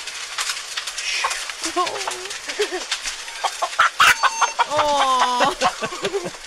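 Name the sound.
chicken clucking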